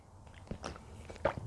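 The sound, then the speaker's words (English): Someone chewing almonds, with a few irregular crunchy bites and soft mouth sounds over about a second and a half, fairly quiet and with no talking. “I had some almonds before I started.”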